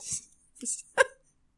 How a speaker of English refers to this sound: I can burp. I'll burp if I'm about to puke or something. But like if someone was just like, burp now, I just can't do it. I mean, I don't know if I can do it on command. No. Burp. Hang on.